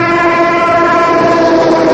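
A railway tank car train carrying coal tar speeds by loud through the rolling plains of Ohio, a steady horn-like chord ringing over continuous rumbling wheels for the whole two seconds, with no voices.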